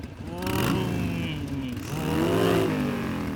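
A motorcycle engine with a standard exhaust revs, the throaty pitch climbing and dropping in two swells over a steady idle rumble, with no voices.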